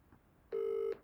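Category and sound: signal or alarm, telephone ringing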